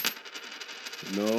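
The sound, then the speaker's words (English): In a game of chance, a dime is tossed into an ashtray and lands with a sharp clink, rattles briefly against the sides, then settles into a whirring metallic ring as it spins down. Clear, with no talking. “See who could put a fucking dime in the ashtray.”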